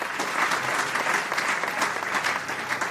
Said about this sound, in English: We really thank God. A round of applause for the word.